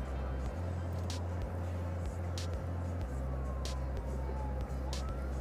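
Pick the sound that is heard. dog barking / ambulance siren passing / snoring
ambulance siren passing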